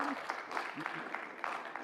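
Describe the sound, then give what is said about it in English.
Scattered applause from a small group, a handful of people clapping unevenly for a couple of seconds with faint murmuring voices underneath. “I got a couple claps in here.”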